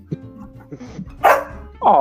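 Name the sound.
dog barking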